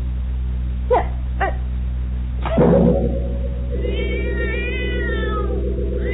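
A cat meows twice in short bursts, then lets out a louder, drawn-out yowl followed by a wavering, whiny cry, all over a steady low background hum with no talking.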